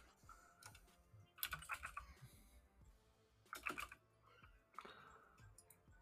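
Bursts of rapid keyboard typing, clicky keystrokes clustered in several quick flurries with short pauses between, fairly quiet, with no voices.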